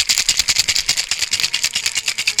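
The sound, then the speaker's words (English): A cocktail shaker holding a drink with a splash of 94-proof small-batch Texas spirit rattles hard and steadily, ice clattering in quick, even back-and-forth bursts with a bright, metallic hiss throughout, and no voices. “And now I'm going to shake it. Shaken, not stirred, baby.”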